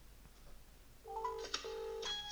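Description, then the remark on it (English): A phone starts ringing with an incoming call after about a second of quiet: a loud electronic tone that shifts pitch in short steps, with a brief click in the middle and no talking. “Alright, let's see if my phone rings.”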